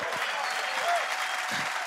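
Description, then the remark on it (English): A crowd claps steadily to give God a clap, a dense wash of many hands applauding together, sustained and even throughout with no voices standing out. “Come on, if you believe that, give God a clap.”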